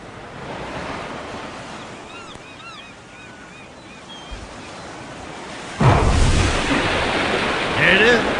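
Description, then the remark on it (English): Steady ocean surf rushes throughout, with a cluster of faint seagull cries early on, then the wash swells louder and rougher as a wave surges. “It was that far under the water and you can hear the seagulls and everything?”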